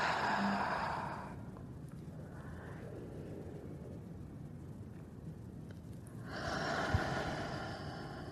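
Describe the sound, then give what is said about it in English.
Slow, deep breathing: a long airy breath, a quieter stretch as air is drawn in through the nose into the belly, then another full, audible exhale through the mouth. No one speaks. “Let's take a couple of deep breaths. Inhaling by the nose, bringing the air to the belly, and exhaling by the mouth.”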